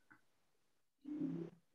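A short, low, buzzy fart lasting about half a second, fairly loud and close, with a faint soft noise just before it. No one speaks.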